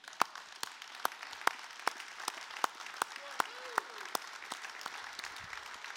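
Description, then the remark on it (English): An audience stands and applauds God during a worship service, dense clapping filling the space while a few sharp, loud claps fall into a steady rhythm roughly twice a second, continuing evenly throughout. “And so as we've been doing in the past, whenever we see something good that God does, let's stand and applaud the God who is so awesome.”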